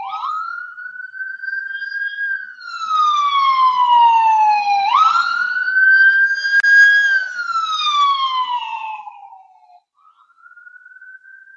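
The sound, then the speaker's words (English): An emergency vehicle siren wails in long rising and falling sweeps, growing louder as it approaches and then dropping in pitch and fading away as it passes, with another faint siren at the end. “I'm excited to be able to use the sounds of those sirens later in one of my science fiction or other dramatic productions.”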